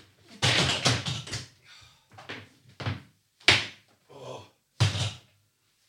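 A door being closed: a cluster of clattering bumps, then several separate sharp thuds at uneven intervals, with a couple of loud, abrupt bangs standing out.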